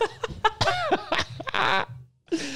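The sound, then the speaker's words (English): A fart: a quick run of loud, sputtering blasts, then a longer buzzing stretch, a brief silence, and one final raspy burst. “That's a fart.”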